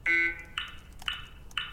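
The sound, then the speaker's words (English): A coded series of electronic pulses: four buzzy, high-pitched tones in a steady rhythm about half a second apart, each starting with a sharp click, the first louder and longer. “Ones for the clicks, since each series starts with a click, and zeros for the pulses.”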